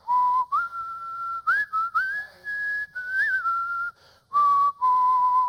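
Someone whistles a melodic tune close by, clear pure notes gliding between pitches in short phrases with brief pauses, no talking.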